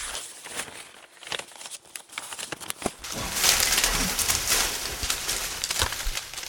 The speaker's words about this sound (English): Dang it, not again. Freaking paper avalanches.